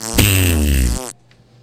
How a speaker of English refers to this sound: Finding 10 hours of continuous fart noises makes you weird.